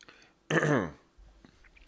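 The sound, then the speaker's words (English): A single short, wet slurp of someone sipping Powerade Zero, lasting about half a second, followed by a faint swallow and quiet mouth noises. No one speaks. “I'll have a little sip of this Powerade Zero.”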